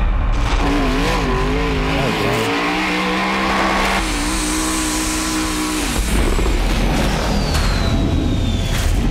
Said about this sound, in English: So the dude's in a race car and he's just doing donuts like crazy. I mean, that's just showboating. But that's Pikes Peak. That's insane.